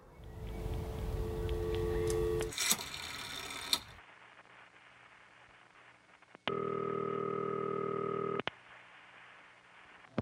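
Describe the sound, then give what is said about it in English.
A telephone call is placed: mechanical clicking and rattling of a dial, then a steady electronic tone with harmonic bands lasting about two seconds before cutting off. No one speaks. “Change that would come with one quick phone call.”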